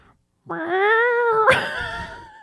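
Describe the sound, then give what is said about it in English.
A person imitates a cat with one long, drawn-out meow, loud, that turns raspy and strained in its final second. No other sounds accompany it. “That's your cat that has like asthma.”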